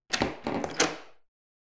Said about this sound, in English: This is my room, scholar. Let me unlock the door for us.